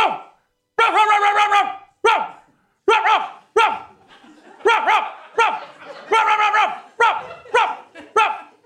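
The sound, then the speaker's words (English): A person imitates a dog, letting out about ten loud barks and yelps in an uneven rhythm with brief pauses, the harmonic bursts clearly voiced rather than canine; it is the first of several imitated barks whose meaning listeners try to guess. “Dog bark number 1.”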